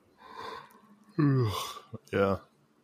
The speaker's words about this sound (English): Yeah, I'm sorry, I made you yawn.